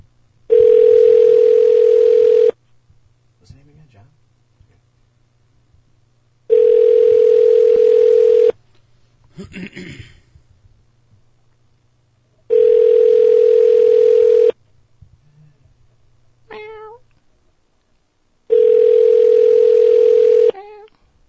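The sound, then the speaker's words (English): Ringback tone of an outgoing phone call: four long, steady buzzing rings, each about two seconds, separated by longer silent gaps, with faint background noises in between. “Well, we'll call him later. Yeah, we'll try him back.”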